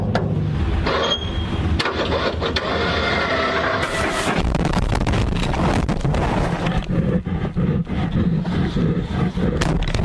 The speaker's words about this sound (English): So if you've ever wondered what it would sound like to be in the wild and be attacked by a wild bear, take a listen.